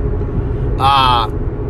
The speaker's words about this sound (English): As you can tell, I'm in the Kia Optima with all the road noise, my busted up windshield, the dented fender.